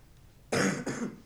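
A sudden, loud sneeze bursting out of near silence in two quick, breathy blasts, with no talking around it.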